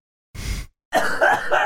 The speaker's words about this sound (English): I'm sorry, I gotta cough.